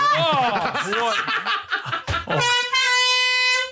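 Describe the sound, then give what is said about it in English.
A burst of snickering laughter gives way to a single loud, sustained air horn blast, a steady, brassy tone lasting over a second until the end. “And maybe an ask why there's no air horns.”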